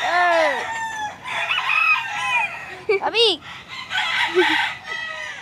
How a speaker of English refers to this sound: He supports his family by raising and training roosters for fights. He's got cages for 250 birds. 250. They're lined up in rows in his backyard. They're stacked up on his roof.